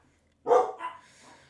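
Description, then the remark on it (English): A dog barks sharply and loudly twice in quick succession because its owner's wife has just arrived home; the second bark trails off into a softer, fading tail after a moment of silence. “My dog's barking because my wife just got home.”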